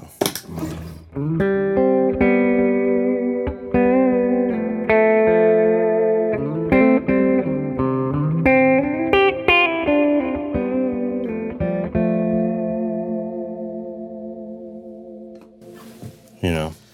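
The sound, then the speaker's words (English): Electric guitar ringing out through a Dispatch Master delay and reverb pedal, sustained chords and repeating echoes layering into a washy tail that fades slowly over about fifteen seconds, with no talking over it. “And I've always loved those Dispatch Masters. They're great. They're great. The reverb in them is just...”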